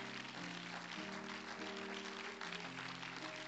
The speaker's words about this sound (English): And the church said, Amen. Clap your hands again to the Lord.